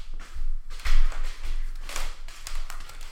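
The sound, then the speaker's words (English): Prosecco being poured into glasses: a bright, fizzing hiss rising and falling in uneven surges, with a few soft taps and clinks of glass along the way. No voices. “Right, let's pop back in and pour the Prosecco back in the room.”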